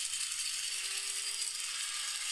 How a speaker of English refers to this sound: Let's see if I can get a coffee grinder sound effect. Yeah, see if we can pull that up. There are the beans going in.